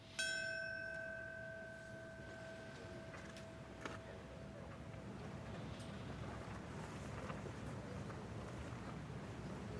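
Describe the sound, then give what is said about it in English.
A single bell strike rings out clearly at the start of a September 11th commemoration ceremony, its tone lingering and slowly fading over several seconds against a steady rush of wind and outdoor noise. “On this September 11th, four, maybe five, of a band in the background up on a stage, if you would, with the shot from the distance in New York, the bell will ring here as well.”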